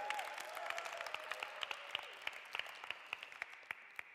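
An audience applauds steadily for a person called up to share, many hands clapping in a dense, sustained patter with a few sharper claps standing out, moderately loud, with no talking over it.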